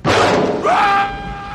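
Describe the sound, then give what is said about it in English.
A loud, noisy crash gives way to a woman's high, sustained scream that rises sharply, then fades into a lingering, ringing tone, in a film scene cutting to outside a ship; intense, with no speech. “The cut to outside the ship and the scream.”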